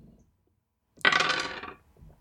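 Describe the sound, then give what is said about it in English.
Dice clatter across a hard surface in one brief rattling burst, fairly loud, tumbling for under a second before settling into quiet, landing on a 5. “It's a 5 on the dice.”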